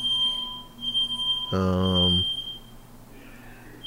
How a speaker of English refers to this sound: Someone pulled the fire alarm.